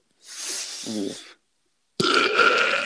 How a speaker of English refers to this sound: Cheeky little burp. Right in the mic.